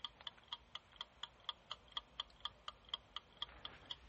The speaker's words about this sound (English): And you see the timer. Or you don't see it, but you hear the timer clicking. Let me stop so you can hear it.